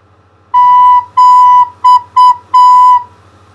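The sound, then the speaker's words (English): A recorder plays a simple pattern of five clear notes, all on B, for listeners to echo: two long notes, two quick short ones, then a final long note. No one speaks. “Now I will play some simple patterns on B, and you echo me.”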